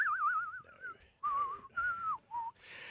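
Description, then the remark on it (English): A person whistles a short film-theme melody: a warbling opening phrase, then several sustained, wavering notes in separate bursts with brief pauses between them. No talking. “You want to do the whistling bit?”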